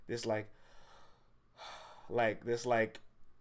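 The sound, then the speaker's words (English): A voice acts out a dramatic, disappointed gasp: sharp breathy intakes and pained vocal groans rising and falling over a few seconds, fairly loud. “everybody kind of had this like gasp.”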